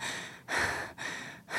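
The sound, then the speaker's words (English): A voice imitates labored, gasping breathing: three strained, airy breaths in quick succession, fairly loud, with brief catches between them and no speech. “It's like, you know, it's like the clenching of the chest and being like, and the breathing.”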